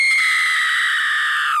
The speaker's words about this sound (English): Mr. Jenkins had not gone more than a few paces towards the Grand High Witch's table when a piercing scream rose high above all the other noises in the room.